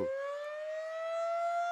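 A town-wide alarm siren sounds alone, one steady, loud wailing tone that holds and slowly climbs a little in pitch, with no voices over it.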